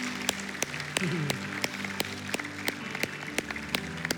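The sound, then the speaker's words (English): An audience at a morning church service gives God a round of applause, producing a steady wash of many hands clapping, with sharp individual claps standing out at a regular beat and a low sustained musical tone underneath. “Let's give God a round of applause this morning.”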